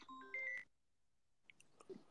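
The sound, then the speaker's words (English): A phone notification beep rings out as a brief electronic chime of several stacked tones, cutting off after about half a second, followed by near silence with a few faint clicks. “It's my phone.”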